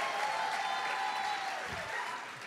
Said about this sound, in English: We're going to take a vote by the round of applause of the audience. We're going to do Jane Jacobs first, then Robert Moses. Yeah, by a round of applause, who found the Jane Jacobs argument more compelling?